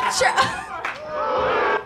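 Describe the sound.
A crowd boos, a loud mix of overlapping voices that rises into a long, sustained, droning jeer lasting nearly two seconds before cutting off abruptly.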